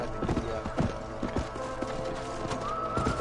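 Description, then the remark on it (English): The hooves of a pink horse clip-clop in a steady, uneven trotting rhythm, a dozen or so moderately loud hoofbeats over a constant background hum, with a faint high whine near the end. “You like the pink horse, huh?”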